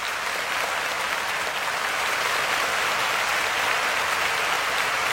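Steady, sustained applause from a sizable crowd, a dense wash of clapping that stays loud and even throughout with no voices standing out.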